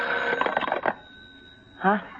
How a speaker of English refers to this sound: Well, Mommy, is it so early in the morning? Is the phone ringing?